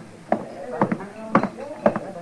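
Hooves clip-clop at a steady walking pace, sharp hollow knocks in pairs repeating about every half second, moderately loud over a faint background.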